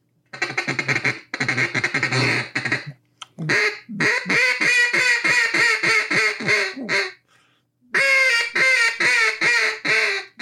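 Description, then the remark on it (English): A duck call is blown to imitate a mallard hen, producing loud, raspy quacks in rapid rhythmic runs, separated by two brief pauses, with no talking. “I mean, that's a mallard hen, is what that is.”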